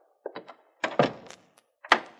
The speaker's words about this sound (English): Hey, what's the idea of locking that door? Well, we don't want to be disturbed, do we